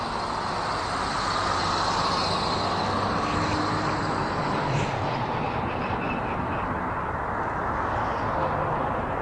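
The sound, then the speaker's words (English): A steady, loud wash of road traffic on a parkway, with a continuous rumbling roar that swells slightly midway as traffic rolls past. No voices are heard. “I'm up on the parkway now. The lights changed, so I'm looking both ways, up and down banks. There's some traffic.”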